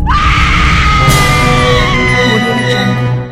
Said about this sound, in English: Let's get down to it. It's time for Women Screaming.